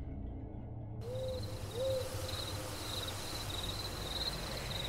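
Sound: owl hooting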